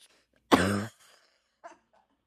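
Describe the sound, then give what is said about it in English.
A single loud cough with a rough, voiced edge, followed a moment later by a faint, short throat sound, then quiet. “I cough at greed.”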